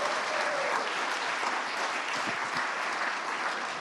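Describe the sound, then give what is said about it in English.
An audience claps for the builder of an Advent Christmas tree, a steady, dense round of applause that holds at an even loudness for about four seconds, with no voices standing out. “And before I do anything else, I just want to say a huge round of applause for”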